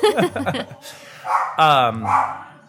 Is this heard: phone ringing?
no